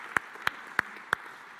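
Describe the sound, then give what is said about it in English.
Sparse applause for a speaker: four sharp, evenly spaced handclaps in a steady slow rhythm, fairly soft, with no voices over them. “Yeah, we give her a round of applause.”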